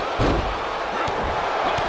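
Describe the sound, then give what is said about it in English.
A heavy neckbreaker slam by the champion in a wrestling video game hits the mat with a deep thud, followed by a couple of softer thumps, all over a steady roar of arena crowd noise. “Oh, and the champion with the neck breaker right out of the gate.”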